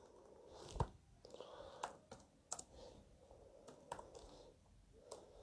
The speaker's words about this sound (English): I'm not even concentrating. I'm typing something.